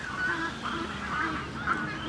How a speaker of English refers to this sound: The hungry ibis has found something it likes in the bin and it's flown off to some trees. Well, there's lots of ibis in those trees. Do you hear the noise they're making?